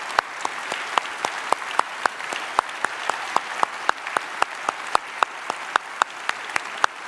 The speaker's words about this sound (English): And so here's what I want to do. I want to take a minute, and I want us just to give the Lord a round of applause for what he's doing.